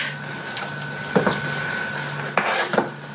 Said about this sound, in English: And she has just added salt and pepper to the water, not to the meat, to the water that the meat is boiling in. Very delicious. Now I'm going to give it a stir.